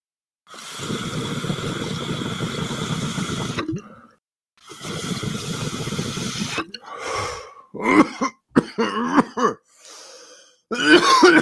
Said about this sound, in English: Oh, why was I just coughing like an old guy? Like I was about to yell at somebody to get off my lawn.